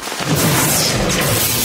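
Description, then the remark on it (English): A loud lightning strike with a thunder crack that bursts in and rolls on as a dense, crackling roar for under two seconds, full, with no voices. “You have a 90% chance of surviving a lightning strike.”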